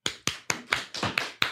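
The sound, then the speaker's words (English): Seven sharp hand claps in a quick, steady rhythm, each crisp smack fading briefly before the next, with no voices alongside. “Clap your hands if you talk during sex.”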